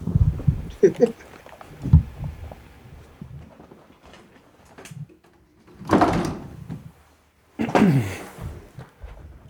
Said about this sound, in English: Hey, I'm going to close this closet door. It looks like doo-doo.